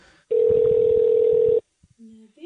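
A steady, loud telephone dial tone sounds alone for just over a second during an attempt to place a phone call that is not ringing through, then cuts off abruptly, followed by a couple of soft clicks and a brief faint tone.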